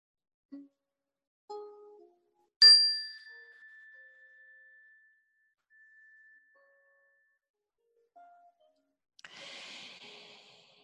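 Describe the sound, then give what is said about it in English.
A single bright meditation chime is struck once to begin a meditation and rings out with a long, clear, slowly fading tone. A few soft incidental noises and a brief rustle follow. “We'll begin the meditation with the ring of the chime and end it with the ring of the chime.”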